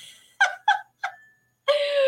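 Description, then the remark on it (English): A cuckoo clock calls with three short, hooting notes in quick succession, then after a brief pause a longer, brighter tone begins and holds. No one speaks. “My cuckoo clock's off. You hear that in the background?”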